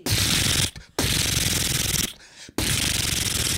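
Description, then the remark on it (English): A voice imitates machine gun fire with three long, harsh, rattling bursts separated by short pauses, loud. “So, I also have a machine gun. You want to hear?”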